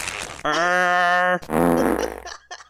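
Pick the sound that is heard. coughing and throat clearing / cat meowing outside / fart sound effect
fart sound effect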